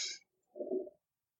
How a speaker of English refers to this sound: Okay. That was nothing. Keep going. Okay. I think he just farted on the podcast. No, it isn't. It was a ghost fart. Oh, all right. It's floor creaking.